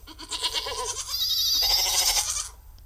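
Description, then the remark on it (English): A goat herd bleats in overlapping, wavering cries near the tents of a glamping ground in a woodland clearing, fairly loud and nearby, with a steady low rumble underneath and no talking. “She could hear the rest of the goat herd nearby.”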